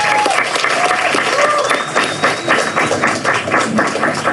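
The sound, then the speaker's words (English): A crowd applauds steadily throughout, a dense wash of many hands clapping, with a few faint whistles or cheers rising above the sustained clapping; another round of applause for a teenager who came out on stage. “So can we get another round of applause?”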